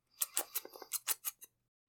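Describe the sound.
A voice mimics sipping tea like Kermit the Frog: a quick run of about nine short, hissy slurping bursts over a second and a half, fairly quiet, with no talking.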